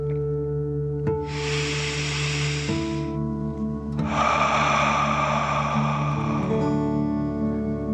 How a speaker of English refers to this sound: Last one. Fill up your chest and belly. Deep breath in and out.